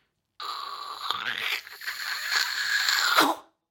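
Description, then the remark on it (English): A voice imitates grinding metal, a harsh, breathy scraping with a rising whine, held for about three seconds before cutting off sharply. “And as those giant eyes opened, can you make like a metal sound, scratching and scraping?”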